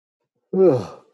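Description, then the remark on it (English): A single voiced yawn rises abruptly and trails off with a falling, breathy tone over about half a second, heard on its own with no talking. “Big yawn. Get it out.”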